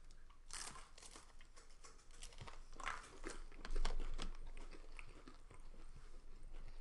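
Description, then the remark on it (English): Someone bites into a crisp water cracker topped with mass-produced hummus and chews steadily, producing a run of dry, crackly crunches of moderate loudness, with no talking over them. “I like it on a water cracker.”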